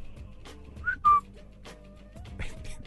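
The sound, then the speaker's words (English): A man in the neighborhood whistles two short notes, the second louder and held a little longer, ringing out over a quiet, murky background, with faint rustling noise around them. “Can you hear him whistling before he's don't like, oh, look.”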